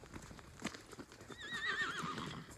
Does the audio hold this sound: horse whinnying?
yes